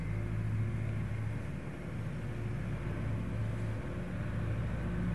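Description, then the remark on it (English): A tractor engine runs steadily outside for the whole stretch, a low, throbbing diesel rumble with a constant humming drone layered over it. No one speaks. “If there was no concept, the tractor sound probably wouldn't be there.”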